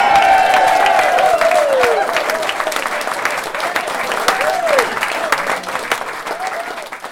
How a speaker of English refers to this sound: So let's put our hands together and give a rousing cheer and pray it will continue for another 54 years.